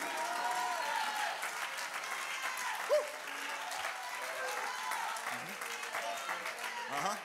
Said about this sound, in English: That's why we get excited when we call upon the name of Jesus. Somebody clap your hands and shout Jesus.